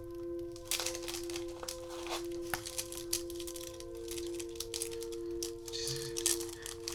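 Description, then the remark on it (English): Continuous crinkling and rustling of a plastic bag holding pens and markers as they are counted, with small hard objects shifting and clicking inside, in irregular bursts over a steady low electrical hum. “There's also some more pens, would you believe it? This is more like it.”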